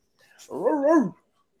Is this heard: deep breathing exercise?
no